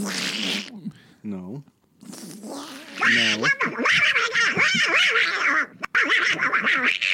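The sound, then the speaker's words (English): A person does a Donald Duck voice impression, producing raspy, garbled quacking squawks in several loud bursts, with brief pauses between. “You do the Donald Duck when we end it.”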